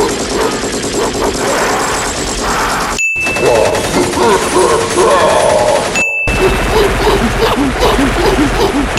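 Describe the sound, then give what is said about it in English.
Loud, dense bursts of rapid movie gunfire fill three back-to-back segments separated by abrupt cuts, with a chaotic mix of explosions, clatter and indistinct shouting beneath the shots. “That's my favorite thing about the new Planet of the Apes movies, is all the ape gunfire they got.”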